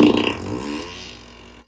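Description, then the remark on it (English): A single loud, drawn-out fart in Dover, Delaware, with a buzzy, sputtering tone, strongest at the start and gradually trailing off over a second and a half, with no talking. “farting to you live from Dover, Delaware.”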